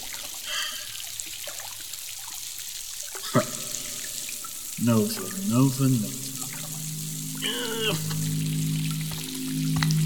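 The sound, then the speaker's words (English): Running water hisses steadily from start to finish, a continuous wash of sound. Partway through, short bursts of human vocal sounds rise over it. “You need water. Come on.”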